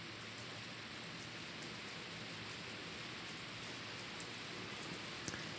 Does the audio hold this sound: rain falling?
yes